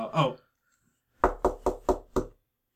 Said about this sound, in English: Are you knocking on our door?